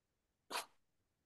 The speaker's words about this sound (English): Bless you, sorry.